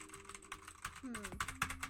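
Clacking of a laptop keyboard as someone types a Google search, a quick irregular run of sharp key taps, with a faint voice murmuring in the background.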